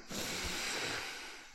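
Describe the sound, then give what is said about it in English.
A single long, airy sniff of a Pokemon trading card pack, a steady breathy inhalation lasting over a second, heard alone with no talking. “Alright, now for the sniff.”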